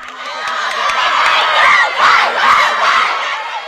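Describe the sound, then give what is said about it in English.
A group of children from two teams cheer and shout together while jumping up and down and hugging, in a sustained, high-pitched burst, with excited whoops rising and falling for several seconds and no clear speech. “Both teams are jumping up and down, cheering and hugging.”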